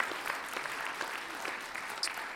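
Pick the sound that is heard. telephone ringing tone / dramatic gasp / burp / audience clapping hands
audience clapping hands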